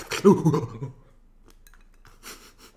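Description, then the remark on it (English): A bright glassy clink rings out at the start, followed by quieter clattering and a soft breath, with faint rustling near the end. “Cheers on it on air.”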